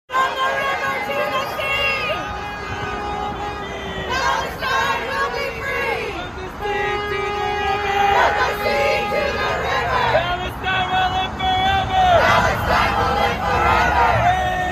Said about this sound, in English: And in New York City, dozens of protesters blocked the Van Wyck Expressway this morning. It's the main road entrance to John F. Kennedy International Airport. They held signs and chanted, "From the river to the sea, Palestine will be free."